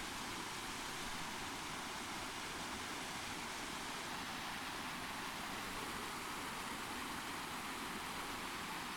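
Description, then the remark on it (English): A steady, dense roar of rushing water from a waterfall reached on a hike on an overcast day, constant and full-bodied for the whole stretch, with no voices or other sounds breaking through. “And I thought as long as I was pausing here by a waterfall, that I would read a poem.”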